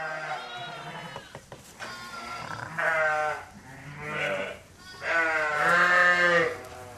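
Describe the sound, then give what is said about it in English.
A chorus of sheep bleating in a sheep shed during lambing season at the end of February, with deep-voiced ewes and higher-pitched lambs calling over one another in loud, overlapping, wavering cries. “It's mayhem here in the sheep shed. There are yows and lambs everywhere.”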